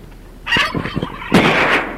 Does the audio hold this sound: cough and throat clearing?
no